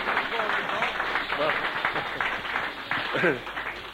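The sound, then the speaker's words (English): At a glory meeting, an audience claps steadily in a dense, continuous patter of applause to welcome a man who has just come up to the front, with a few voices calling out over it near the end. “Give him a clap.”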